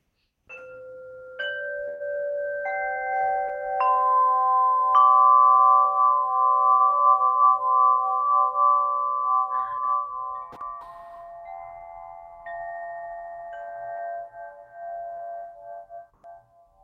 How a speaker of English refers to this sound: This is my favorite thing right now. This is my flow chime, and it's so cool.